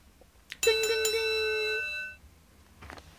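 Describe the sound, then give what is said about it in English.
A referee's bright metallic bell at a cage wrestling match is struck sharply a few times in quick succession, then rings out with a sustained, shimmering tone that fades over about a second and a half. “And the referee rings the bell.”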